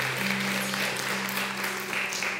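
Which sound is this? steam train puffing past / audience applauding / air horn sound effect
audience applauding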